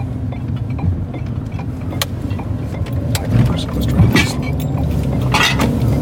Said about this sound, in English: So everybody can tell we're getting bottles, or money for bottles, because bottles make noise.